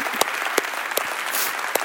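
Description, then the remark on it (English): A church audience claps together in steady applause, giving Jesus a hand clap, a dense wash of many hands with a few sharper individual claps standing out at regular intervals, moderately loud. “You guys are way better hand clappers than the 9 o'clock service.”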